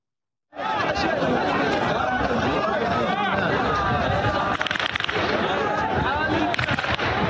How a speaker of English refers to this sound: Look, it's the tracer rounds from the stampede. It's the crackling gunfire of chaos in a stampede that took place.